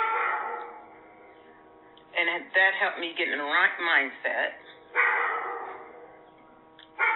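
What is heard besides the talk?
dog barking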